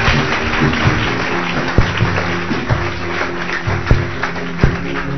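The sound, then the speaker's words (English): An audience claps for Jesus after a healing testimony is read out: a steady, dense, continuous wash of applause with a few sharper, louder claps standing out every second or so. No one speaks over it. “Clap for Jesus again.”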